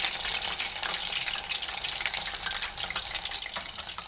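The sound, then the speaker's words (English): Food sizzles and crackles steadily in hot oil, a dense, continuous frying hiss with scattered pops, fairly loud throughout, with no voices. “And if the temperature is high enough, which is really anything above the boiling point of water, water will evaporate in a low gurgle, keeping oil out of your food.”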